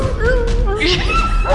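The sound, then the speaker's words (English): A person voices a dying dog's pained yelp while narrating a fantasy game combat round: a drawn-out whining cry that wavers and slides in pitch, steady over a low background rumble. “When he's giving the combat descriptions of the rounds as they go by while the party is fighting a group of kobolds, he put in dogs barking. Barking noises. And as one dies, your dog.”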